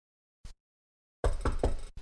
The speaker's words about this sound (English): You knock.